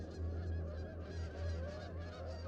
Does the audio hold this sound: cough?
no